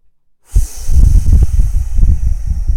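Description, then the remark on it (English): A cow snorts and huffs loudly after a brief silence, a run of rough, low, breathy bursts over a steady airy hiss lasting about two seconds. “Cow, go away. Why are you so loud?”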